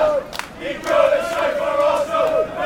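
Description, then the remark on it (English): A crowd of football fans pouring in as kickoff approaches at a Chelsea match fills the air with a steady, loud wash of chanting voices, sustained singing tones rising and falling over a constant murmur for a few seconds. “So we're approaching kickoff now, fans pouring in, and still it feels like a pretty normal match day experience to me.”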